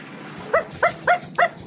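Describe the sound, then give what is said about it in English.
A dog, Snowy, barks four times in a quick, fairly even rhythm, each bark short, sharp and mid-pitched, standing out clearly over a faint steady background hiss. “Oh, shush, Snowy. Quiet.”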